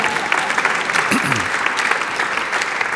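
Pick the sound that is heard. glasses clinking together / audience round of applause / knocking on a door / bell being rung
audience round of applause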